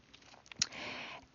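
A single quiet sip of hot tea: a soft click of lips on a cup, then a breathy slurping draw of tea lasting about half a second, with no talking.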